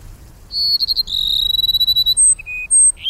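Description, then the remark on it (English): Sparrows sing in the Sonoran Desert during the late summer rains, a high sputtering burst followed by a fast buzzy trill and a few thin whistled notes, over a quiet low rumble. “Bonnerized sparrows add their distinctive sputters and trills.”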